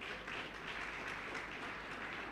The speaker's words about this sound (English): Clap your two hands for Jesus.